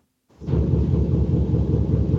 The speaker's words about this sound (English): It sounds like a device turned on, I guess. I think it sounds like a clothes dryer or something. I think it's the washing machine in its final death throes. Oh, yeah. Of that cycle.